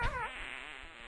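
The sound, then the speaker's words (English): A quick, buzzy fart sound effect played as a drum roll of farts: a brassy blurt with a wobbling pitch at the start, trailing into a sustained raspy drone. Fairly loud, with no talking. “Well, let's do fart sounds.”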